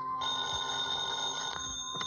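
An old-fashioned telephone bell rings loudly and continuously, its bright metallic jangle filling the whole moment with no voices present.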